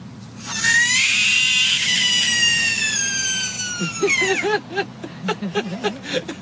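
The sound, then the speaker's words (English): A frog lets out a loud, sustained high-pitched scream, a shrill harmonic wail lasting about four seconds before breaking off, followed by a short stretch of choppy, lower-pitched sounds. “And finally, a frog.”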